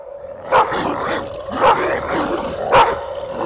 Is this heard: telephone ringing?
no